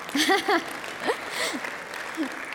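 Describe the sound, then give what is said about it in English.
An audience celebrating Mother's Day claps steadily, a dense wash of overlapping hand claps, while a few voices call out and cheer with rising and falling tones over the top. “As you're celebrating Mother's Day today, all right, we can clap.”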